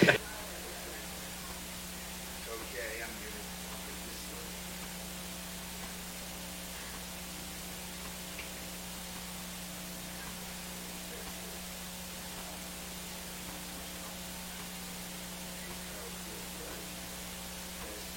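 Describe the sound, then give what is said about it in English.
A steady, low-level hiss of static from a radio transmitter with a faint underlying electrical hum, running unbroken for the whole stretch with no voices over it. “The Holy Spirit is giving me static.”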